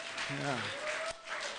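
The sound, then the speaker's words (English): Dense audience applause in a church for the worship leaders, a steady hiss of many hands clapping, with a short humming vocal tone rising briefly over the crowd near the start. “applause to our”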